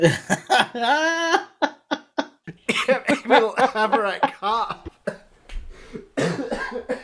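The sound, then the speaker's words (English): A man coughs in a series of harsh bursts, interspersed with strained vocal sounds and breathy pauses, loud throughout. “It's better that he's coughing.”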